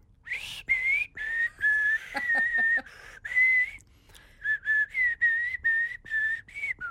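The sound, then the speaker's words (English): Someone whistles a simple tune, a string of clear, sustained notes with short gaps between them and a brief breathy flutter midway, with no talking over it. “They'll hear you whistling.”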